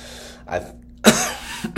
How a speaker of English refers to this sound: Sorry guys, there's that cough.